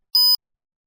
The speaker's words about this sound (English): Just memorize these possessive adjectives. To do that, repeat the sentences after the beep.